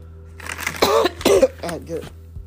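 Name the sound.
coughing and throat clearing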